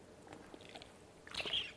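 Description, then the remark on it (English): A squeaky spill-proof water bottle during drinking: faint sipping and mouth sounds, then a brief, louder high-pitched squeak near the end. No one speaks. “Excuse the squeaky water bottle. It's really convenient. It doesn't spill, but it makes a little noise.”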